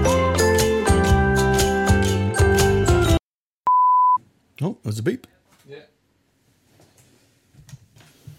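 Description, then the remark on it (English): A single steady electronic low-battery warning beep from a recording device, loud and clean, lasts about half a second right after music cuts off, and voices begin talking soon after. “The battery's done? We heard it beep.”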